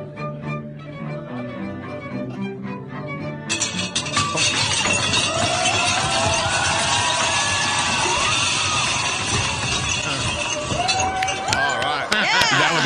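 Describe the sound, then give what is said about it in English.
Party chatter and music give way to a sudden loud crash as a tower of champagne glasses topples and shatters, a long clattering cascade of breaking glass tangled with the noise of a reacting crowd. “You ever think about what happens if one glass slips?”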